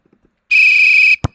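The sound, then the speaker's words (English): A single loud, steady referee's whistle blast lasting over half a second, followed almost immediately by a short, dull thump, with no voices present. “All right, there's the whistle and the kickoff for this week's preview for the two-minute tip.”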